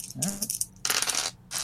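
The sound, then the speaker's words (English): Three dice clatter and tumble across a hard surface in a few quick bursts of rattling clicks, rolled in a tabletop game to find pairs of numbers, with no one speaking. “So you're going to roll 3 dice.”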